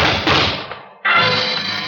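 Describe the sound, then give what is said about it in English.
Two loud gunshots about a second apart, fired behind an office door, each a sharp, booming crack followed by a rumbling tail that fades away. No voices are heard. “The shots came from behind my office door.”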